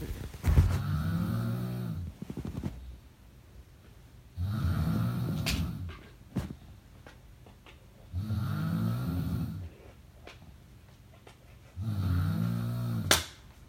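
A woman snores loudly and steadily, four long, rumbling breaths repeating at an even rhythm with quiet pauses between, with no talking; a recording of her snoring made years ago, when she drank red wine.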